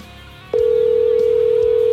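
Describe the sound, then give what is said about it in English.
A steady electronic telephone tone, the ringback of an outgoing call placed during the Southern Maryland Guitar Guru Show, starts abruptly about half a second in and holds at an even, fairly loud level with no voices. “Oh, it's ringing, dude. We're locking in the signal.”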